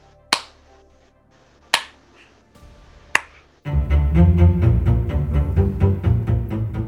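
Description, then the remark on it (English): Three slow, crisp hand claps ring out alone, evenly spaced with pauses between them. Loud, full music then bursts in and continues to the end. “She deserves a slow clap.”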